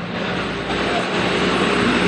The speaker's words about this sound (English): That's another cement truck.